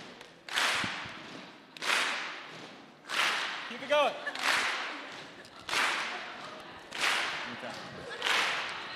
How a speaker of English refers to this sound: So we need your help. We need your help creating a beat. So follow my lead here. We want to stomp, clap, stomp, clap, stomp, clap, stomp, clap.